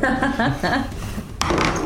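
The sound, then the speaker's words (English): Voices talk over the scene while a d20 die is re-rolled in a tabletop game, clattering across a hard tabletop in a short, sharp burst of rattling clicks. “I'm going to use my saving thing. Okay. I'm going to re-roll this.”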